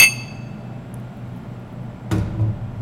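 Glasses clink together in a toast to prize winner Kevin Johnson: a bright, ringing chime at the start that fades quickly, then a duller knock a couple of seconds later over a quiet background. No one speaks.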